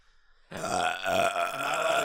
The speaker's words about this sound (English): I'm burping!